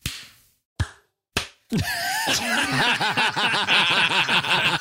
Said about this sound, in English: we'll just do a 3-2-1 and then just do a visual and then in front of the microphone clap so I can have a recording point for all three of us.